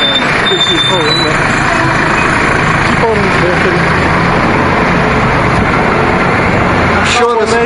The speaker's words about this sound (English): Hey, there's a bus.